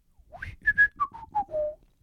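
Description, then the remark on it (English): A person whistles a short descending tune of about six clear notes, with no talking. “I can whistle better than this.”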